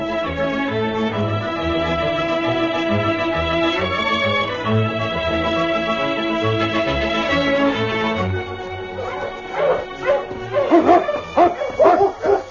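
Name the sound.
sled dog team barking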